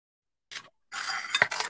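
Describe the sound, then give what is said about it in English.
Cat food being opened: a short scrape, a pause, then a longer rough scraping with a sharp metallic snap partway through, moderately loud, with no one talking. “Oh, I'm opening the cat food.”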